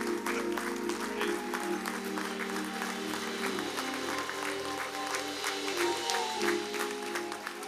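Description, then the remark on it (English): The audience of Cade Chapel stands and applauds their pastor, who was honored for leadership in social justice: a dense wash of overlapping hand claps, with a sustained organ-like tone droning underneath and faint voices mixed in. “Would you stand and applaud our pastor for not only that, but for all the things that he does?”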